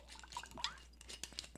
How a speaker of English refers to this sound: Pour it closer to the mic.